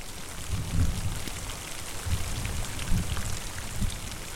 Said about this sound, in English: The rain, when it begins, comes slowly, like grace.